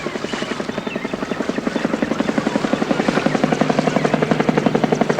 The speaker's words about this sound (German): Da kommt mein Papi mit dem Hubschrauber. Ja, ja, es ist ein Polizeihubschrauber.